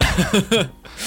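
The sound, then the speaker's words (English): A short run of raspy, throaty coughs, three quick bursts, then a brief pause and a strained breathy sound as someone tries to clear their throat of a coffee grain stuck in it. “Sorry, I think there's a coffee grain in my throat that like I think fell through my coffee grinder.”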